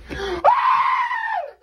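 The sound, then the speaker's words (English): A loud, high-pitched excited scream rises sharply and holds for about a second before trailing off, preceded by a brief lower vocal sound. “Screams like a little girl.”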